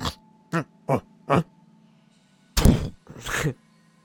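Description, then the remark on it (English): A voice imitates the snoring of Groth, a giant character snoring in the corner: four short, evenly spaced nasal snorts, a brief pause, then two louder, longer, rasping snorts. No other talking. “Groth has been snoring in the corner, but you hear like a...”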